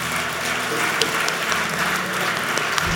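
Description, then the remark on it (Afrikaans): A church audience claps steadily for a few seconds, a dense, even patter of many hands at a fairly loud, constant level with scattered sharper claps standing out. “Kom ons klap hande vir die ouens wat dit gedoen het.”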